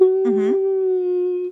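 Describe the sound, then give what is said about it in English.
A person hums a long, steady, mournful tone imitating a whale in space, with a brief warbling swell near the start before it holds flat and stops abruptly. “That was going to be my space whale noise, but then it kind of trailed off.”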